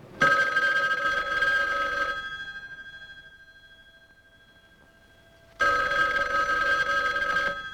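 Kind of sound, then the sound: household object, telephone ringing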